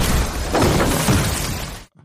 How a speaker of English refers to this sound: And I love the way he sort of steps slightly aside. And then, boom, a bus crashes through the wall.